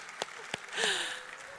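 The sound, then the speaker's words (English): Soft audience applause for preschoolers. A steady hiss of many hands, with a couple of sharper individual claps standing out, swells briefly near the middle before settling. “Give it up one more time for all of our preschoolers.”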